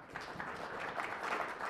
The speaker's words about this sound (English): He brought me an amazing lady, and here she is. Nice round of applause for my queen.